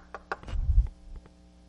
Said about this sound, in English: You're in the first century. The Roman guards knock on your door.